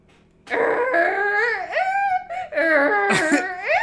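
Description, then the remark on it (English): A person's voice imitates a donkey's bray, loud, harmonic honking that swoops up and down in pitch across several strained, wavering pulses, with no other talk. “And then do the donkey after that.”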